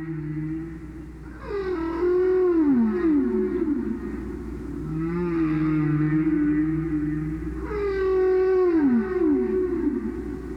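Whale song: long, sweeping moans and rising-falling tonal calls in three drawn-out phrases, heard alone over a low, steady underwater rumble.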